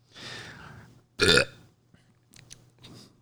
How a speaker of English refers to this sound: This dude burping on the air.